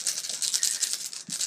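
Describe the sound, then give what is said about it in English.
Dice rolled for the Cardinals, coming up 9, rattle and clatter continuously for over a second, a dense stream of bright, clicking hits with a brief pause near the end before the rattling resumes. No one speaks. “Let's see what my dice have to say.”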